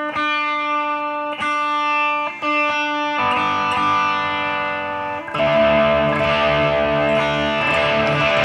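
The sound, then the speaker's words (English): A distorted electric guitar plays a heavy riff in drop D tuning: a few sustained ringing chords, then denser, louder strummed chords that swell and ring out, with no voices. “So when you play the riff, it sounds really kind of heavy, right?”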